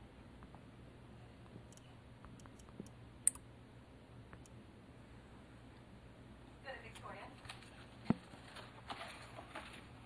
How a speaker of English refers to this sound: He keeps shuffling these papers.